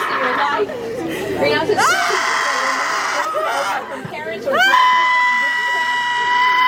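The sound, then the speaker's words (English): A crowd gathered in a semicircle around a woman in a parking lot, crying and screaming, with several shrill, wailing voices rising and overlapping in long sustained cries over a background of agitated chatter, loud. “And the people who are crying and screaming, that's like a crowd kind of gathered in a semicircle around her in a parking lot.”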